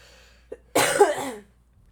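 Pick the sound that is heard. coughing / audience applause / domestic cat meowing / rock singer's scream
coughing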